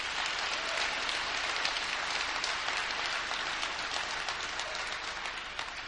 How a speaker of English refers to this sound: Let's give another clap offering for that awesome message.